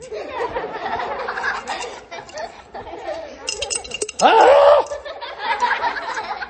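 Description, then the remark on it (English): Coins clink and rattle as they are shaken out of a coin bank, a scatter of light metallic taps, with a brief high vocal squeal or laugh partway through. “Okay, so there's no more coins in my bank. I got them in my hand because coins are valuable.”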